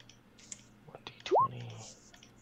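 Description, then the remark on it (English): A die is rerolled in a game, clattering briefly with a scatter of light, sharp clicks, followed by a loud, short rising vocal exclamation and a low steady hum underneath. “Yes, you may reroll as many dice as you wish. Reroll one of those.”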